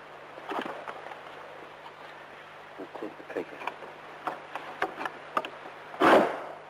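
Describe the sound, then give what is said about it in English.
The bolt on the curtained chancel door of Borley Church being slid back, heard as a run of small scraping clicks and taps that ends in a louder, sharper clunk, with a low steady hum underneath. “Now, can you try sliding that bolt back to see what sound it makes?”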